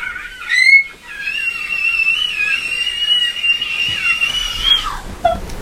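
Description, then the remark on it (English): A voice imitates a dying remote control car: a high, thin, wavering whine held for several seconds, then sliding down in pitch and sputtering out at the end. “You sound like one of those remote control cars dying.”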